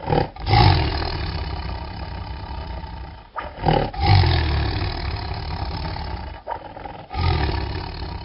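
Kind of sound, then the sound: animal, tiger roaring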